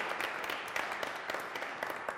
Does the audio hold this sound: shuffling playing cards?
no